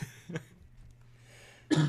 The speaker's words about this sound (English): I cannot shake this cough. I swear that it's not COVID.